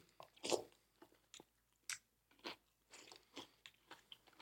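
Crisp crunching of someone chewing crunchy cereal with soggy Frosted Flakes mixed in, a loud bite followed by a series of irregular, quieter crackling chews with no talking.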